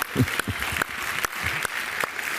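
An audience applauding steadily, a dense wash of many hands clapping with sharp, evenly spaced louder claps punching through in a regular rhythm, and no speech.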